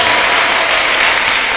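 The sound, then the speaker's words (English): An audience clapping together during a church service before a baby dedication, a dense, steady wash of many hands applauding at an even loudness throughout, with no voices standing out. “Those who are clapping, may there be more babies in your house.”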